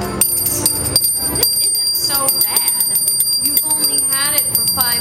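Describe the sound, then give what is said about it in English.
A charity handbell, rung by a Salvation Army worker, rings continuously in a bright, steady jangle throughout, while people talk over it in a busy, noisy setting. “Here, give me that bell, you grinch.”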